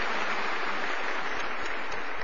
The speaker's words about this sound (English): The Boys and Girls Chorus, always wonderful, about as good as it gets. So a big round of applause, Boys and Girls Chorus, wherever you are.